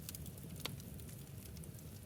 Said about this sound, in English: And while we're getting our first sips in, why don't you just listen to the crackling fire?